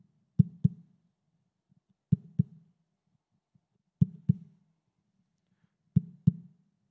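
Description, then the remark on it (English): Four evenly spaced double thumps, a low lub-dub heartbeat pattern roughly every two seconds, fairly loud with silence between, apparently made by a person tapping or imitating a heartbeat. “He used to say, "Can you hear the heartbeat of God?" It goes like this.”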